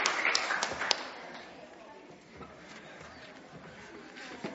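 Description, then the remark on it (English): A church audience applauds the children during a morning service, a dense crackle of many hands clapping at once, loudest at the start and then settling into a steady, softer patter. “But I think they need a round of applause because they did very well this morning.”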